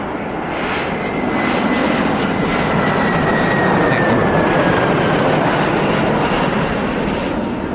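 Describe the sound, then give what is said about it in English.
Aircraft engines in a flight simulator, powered back on, roar steadily and loudly, running continuously as a broad droning rumble with a faint whining tone drifting across it, filling the whole stretch with no voices. “We're gonna power the engines back on.”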